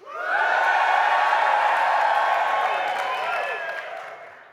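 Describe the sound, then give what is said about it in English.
About 350 people at the Uprising student work conference in Derby erupt in loud, sustained cheering, with whoops and shouts blending into a dense roar that holds steady for several seconds before gradually tapering off. “I'm not sure whether we've got microphones that are going to pick this up, but I wanted to give a massive cheer out. There's 350 people.”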